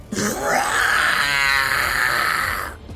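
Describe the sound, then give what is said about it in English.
A menacing monster growl from a giant creature with red eyes, silver fur and a scorpion tail rumbles for about two and a half seconds, raspy and wavering, holding steady at full loudness before abruptly cutting off, with no talking over it. “You hear a menacing growl.”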